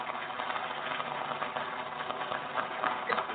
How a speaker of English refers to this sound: he used to have this box that just had all these sound effects on it, you know, or whatever. But I go, let me put the applause in. This is it.